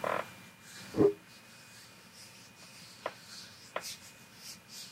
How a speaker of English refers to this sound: I'm going to rub my hands together very slowly.